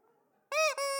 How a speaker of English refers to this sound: So we have a squeaky pig, a squeaky sprout.